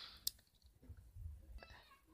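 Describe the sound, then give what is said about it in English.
A soft papery rustle opens, punctuated by a sharp click, followed by quieter shuffling and a second brief swish as a page is turned. No one speaks. “Next point, and I'm turning the page.”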